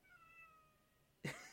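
A cat meows, starting with a soft, drawn-out tonal call and ending in a sudden, much louder, brief cry. No one speaks.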